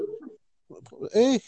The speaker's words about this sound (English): Is that your dog? We have a guest. Hang on. Good grief. There's a dog barking halfway through our podcast, ladies and gentlemen.